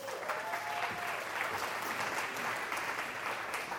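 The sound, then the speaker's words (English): An audience applauds steadily for several seconds for a guest coming up to introduce himself, a dense, even wash of clapping hands with no pauses, holding a constant loudness throughout. “Why don't we give him a nice round of applause?”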